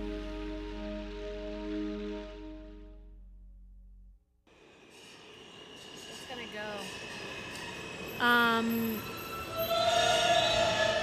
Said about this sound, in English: We are in the subway station in New York City, and I'm sitting here with my friend